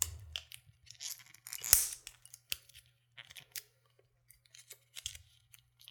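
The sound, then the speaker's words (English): Crinkly plastic shrink wrap being snipped and peeled off a skull-shaped spirits bottle, a run of sharp crackles and clicks with one louder snap partway through, fairly quiet, no voices. “All right, got the shrink wrap off.”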